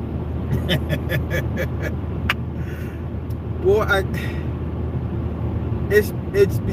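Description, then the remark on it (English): Steady low engine and road rumble fills the inside of a moving car, constant throughout, with a few brief clicks and a voice sounding faintly over it. “By any means, I'm back in my car again.”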